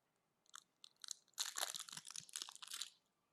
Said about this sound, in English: It's kind of like this. I got to open this up. Ketchup bottle, Heinz ketchup bottle.